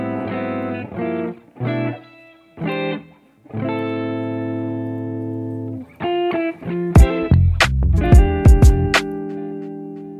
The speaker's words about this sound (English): I think you got to cue out that outro before we do so.